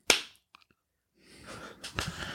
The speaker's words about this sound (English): We're gonna clap after one, three, two, one, clap.